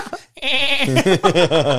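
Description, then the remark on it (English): A goat bleats loudly, one long wavering call that breaks into a rapid, quavering series of pulses, with no talking over it. “Or they just come to get it off us, and it's a goat.”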